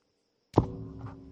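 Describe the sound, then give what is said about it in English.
A single heavy thump as a microphone is struck, a sharp knock followed by a low, ringing hum that lingers and slowly fades after a quiet start. “Hit the microphone, you dickhead.”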